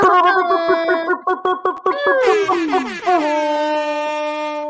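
A loud air horn sound effect blares in a rapid stutter of short blasts, then swoops downward in pitch and settles into one long, sustained honk.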